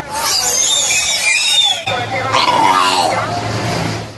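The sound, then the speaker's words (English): Wiki, a 16-year-old killer whale taught by animal trainers in France, imitates human speech through her blowhole, saying hello and 1, 2, 3 and blowing raspberries: loud, squeaky, wheezing syllables with whistling high tones and raspy bursts, running continuously with a brief break midway. “Animal trainers in France are teaching a killer whale to mimic the human language.”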